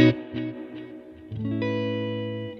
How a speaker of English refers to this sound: From there, it goes to this Specular Tempest, which I use as like my long delay if I just need, you know, a longer delay.